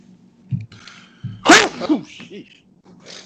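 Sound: sneeze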